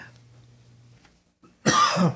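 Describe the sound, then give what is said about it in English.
A person with something in their throat gives a loud cough and harsh throat clearing in one short burst after a moment of near silence, with a faint low hum in the background. “Excuse me, I have something in my throat.”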